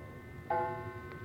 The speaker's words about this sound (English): It's after dinner now, and as the clock in the hall strikes eight...